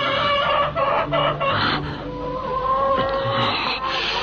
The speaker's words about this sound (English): That tape proves that chickens do cry. Yes, this is what it sounds like when chickens cry.